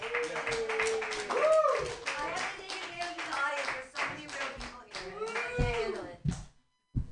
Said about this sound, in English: All right, keep clapping.